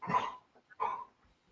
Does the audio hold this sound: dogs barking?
yes